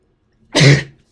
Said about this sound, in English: Big sneeze.